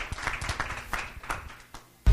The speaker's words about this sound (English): So in addition to the panel, give yourself one last round of applause for being here. Thank you very much.